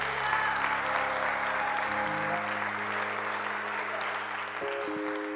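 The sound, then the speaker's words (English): A church audience applauds steadily as a hand clap of praise to God, a dense wash of clapping sustained throughout, with sustained organ-like tones held underneath that shift pitch near the end. “Come on, give God another hand clap of praise.”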